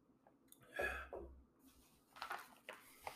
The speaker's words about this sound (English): I had to get a drink of water there.